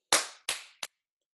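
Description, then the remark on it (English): Three sharp hand claps with no voices: the first two land about a third of a second apart and ring out briefly, and a quicker, clipped third clap follows. “I don't know why I'm clapping.”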